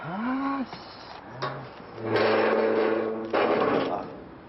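Loud, clattering bangs against a metal gate, a few sharp hits followed by rattling, ringing stretches, with a brief voice-like sound near the start.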